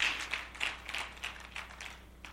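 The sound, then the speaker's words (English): A church audience gives the Lord a clap offering, many hands making a dense, uneven patter of overlapping claps with a loose rhythm, fairly soft overall and with no voices over it. “Come on, let's give the Lord a good clap offering.”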